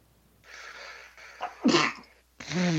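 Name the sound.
sneeze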